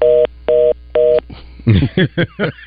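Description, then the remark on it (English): Three steady, evenly spaced telephone tone beeps on a call-in line, each about a quarter second long, followed by a burst of muffled speech over the phone line. “Yeah, these phones have a mind of their own.”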